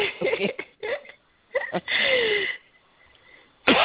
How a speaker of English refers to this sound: Excuse me. Well, I feel a bad cough.